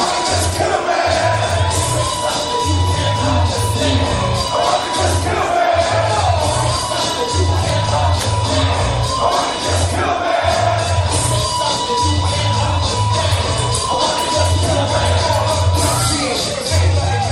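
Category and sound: crowd, cheering crowd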